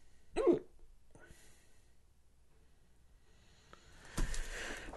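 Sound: hiccups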